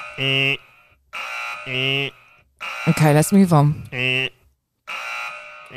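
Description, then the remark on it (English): A harsh wrong-answer buzzer in a quiz is pressed again and again, sounding in about five loud, droning bursts with short gaps, while someone briefly talks between them. “I'm going to keep pressing this button.”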